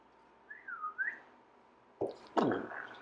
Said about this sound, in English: I'm going to whistle for my bike.